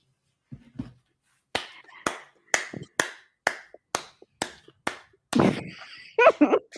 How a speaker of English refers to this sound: The snaps is not even working no more. Okay, it's just clap, standing ovation.